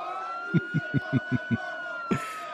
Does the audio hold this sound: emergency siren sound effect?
yes